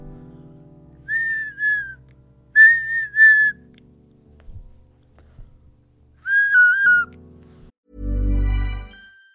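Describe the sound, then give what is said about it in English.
Short melodic phrases on a Spanish clay ocarina, its clear, breathy whistle tones played in three separate bursts with quiet pauses between, then a deeper, louder tone at the end. No one speaks. “So you will either hear a digital advert or my magnificent Spanish clay whistle called an ocarina.”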